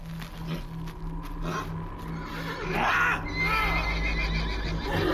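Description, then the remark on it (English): Several horses neigh and whinny in agitated bursts, loud, with a low steady rumble underneath and a faint clatter like hooves or movement. “Cast something on the damn horses.”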